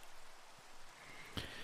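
Steady, soft rain patters in a continuous hiss, fairly faint and even throughout, with one sharper drop or tap standing out near the end. No voices.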